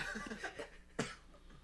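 A single short, sharp cough bursts out about midway, preceded by faint muffled vocal sounds and followed by quiet background noise; the whole thing is fairly soft.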